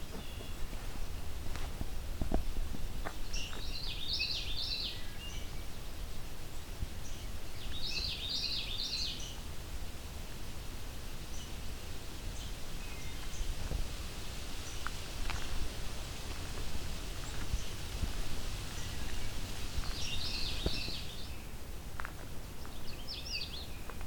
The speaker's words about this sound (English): Canada warbler is a bit further off, so very quiet.